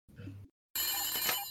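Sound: telephone bell ringing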